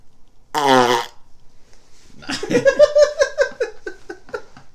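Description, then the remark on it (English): A single loud, wet fart noise, brief and buzzy, sounds close up, followed by a short pause and then a burst of loud, bubbling laughter. “Your laugh is like just as loud as the fart.”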